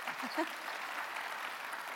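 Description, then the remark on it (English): A crowd applauds with steady, dense clapping that holds at an even level throughout, with a brief vocal murmur near the start. “Pause for applause.”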